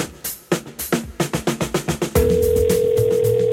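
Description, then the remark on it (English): A rapid series of about a dozen crisp telephone keypad tones beeps out at a steady rhythm as a number from the phone book is dialed, then gives way to a loud, continuous steady tone that holds to the end. “Turning to the phone book, I dial random Elliots to see how unlucky they are.”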